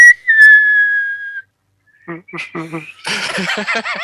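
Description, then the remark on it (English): A person whistles while breathing in: one sustained, slightly wavering note that slowly drifts downward for about a second, then stops; after a short pause, people talk and laugh. “If you breathe in and whistle, it's easier.”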